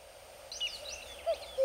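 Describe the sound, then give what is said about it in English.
Woodland birdsong from nightingales, cuckoos and other woodland birds in the rewilded pastures of NEP Castle, West Sussex, England: rising and falling chirps and whistles above a couple of lower, clear hooting notes, fairly faint and set against a quiet outdoor background, no voices. “A chorus of nightingales, cuckoos, and other woodland birds permeate a landscape that was, until only a few years ago, empty of their song.”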